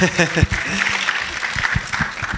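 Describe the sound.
A crowd breaks into steady, dense clapping to welcome Compassion's Madrid coordinator, filling the whole stretch at a fairly loud level, with a brief voice calling out at the start and scattered voices beneath.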